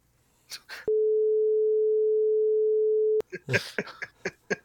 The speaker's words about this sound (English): And I'm going to bleep out my mom's name now.